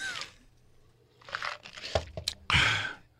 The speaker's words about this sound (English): Hey, have a sip of water. Hold on.